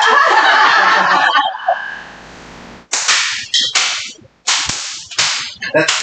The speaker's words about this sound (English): Yeah. That's very cool. It does. It's a nice bull whip. It's scary. Well, the handle is about 5 feet. The whip is about 5 foot.